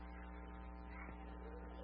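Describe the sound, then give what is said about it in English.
A steady, low electrical hum from an air conditioner drones on without a break, its even tone holding constant and quiet, with no voices over it. “We've been having some issues with our air conditioner making noise.”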